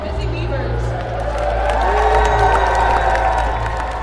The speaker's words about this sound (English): Believe it or not, these loud cheers are not on a basketball court or even in a gymnasium. They are actually coming from the lobby of Central Library, where, on a recent Saturday morning, dozens of kids ages 9 to 17 competed for top honors